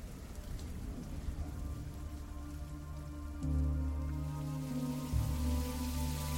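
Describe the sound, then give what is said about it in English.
Steady rain patters on a hard surface, a dense continuous hiss of drops with a low droning hum underneath that grows louder partway through; no voices. “she ran into the rain with her parents.”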